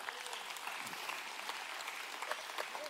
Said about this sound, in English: Because through that, you're able to have the spirit of gratitude. And you're, amen, we can clap for that.